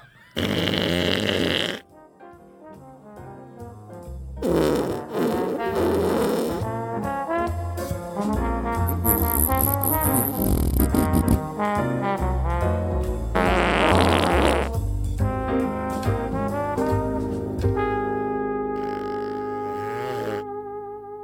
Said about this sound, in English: Women don't fart, they fluff.